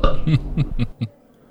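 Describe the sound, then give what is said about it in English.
A loud belch comes out in a quick series of throaty, croaking pulses, about four rhythmic bursts over a second before it stops abruptly into silence. “So today we'll be discussing and rating these beers with these suds ratings, plus our signature belching sounds, and here they are now.”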